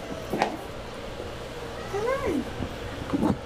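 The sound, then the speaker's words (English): A single adoptable cat, one set for a cat cafe in San Francisco, meows once, a clear rising-then-falling call near the middle, with a few soft clicks and thumps before and after against a quiet background. “This is just one of the cats coming soon to a cafe near you.”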